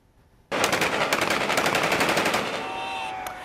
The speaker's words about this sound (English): And with Wagner forces firing their guns into the sky on Saturday evening and cheers from the watching public, his troops also departed the city just hours after they controlled a military building, with further Wagner troops moving towards Moscow.